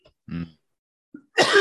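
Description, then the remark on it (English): A raspy throat clearing, after a harsh hit of cannabis from a water pipe, is followed after a brief pause by a sharp, harsh, loud cough burst, with no talking. “Now, do joints make you cough as much?”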